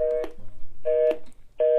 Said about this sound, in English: I thought it was just like a regular speaker when I took it out. Now I'm like, man, this is fresh. Like it sound like a phone.